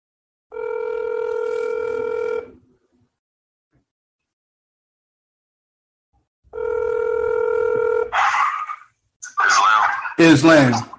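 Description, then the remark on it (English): A phone call placed from a second phone rings twice, two steady electronic buzzing tones about two seconds each with a long pause between, then someone picks up and a voice starts talking over the line. “I'm going to call him on my other phone so you'll be able to hear him out.”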